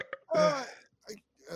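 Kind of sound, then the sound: human body sound, burp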